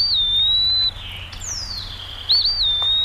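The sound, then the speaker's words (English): An eastern wood pewee sings clear, slurred whistled notes, a rising-and-falling phrase followed by a longer downslurred whistle, fairly loud over a faint low background hum. “likely speaking of the eastern wood peewee”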